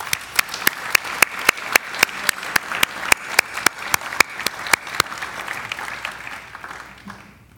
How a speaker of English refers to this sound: Let's applaud each of them for bringing hope to children in Guatemala.